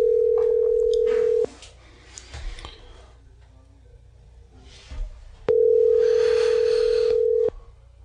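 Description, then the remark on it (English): A phone line rings out on an outgoing call: two long, steady ringback tones separated by a silent gap of several seconds, clear and fairly loud over faint background rustling. “Oh, it's ringing.”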